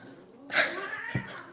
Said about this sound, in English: Oh, my cats are fighting.